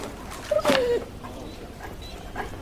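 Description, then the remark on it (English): A dog outside with Robert Durst on a rainy night in New York gives a brief, high whine that slides downward, with a sharp bark-like yelp in the middle, then the scene falls back to faint, quiet background noise. “Robert Durst is outside with his dog.”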